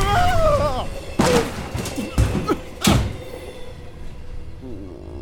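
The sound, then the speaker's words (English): The door of a moving train slides open over the train's steady rumbling, followed by three heavy thuds in quick succession as a body is thrown out, with a brief vocal sound at the start. “That's no way to exit a moving train, my boy.”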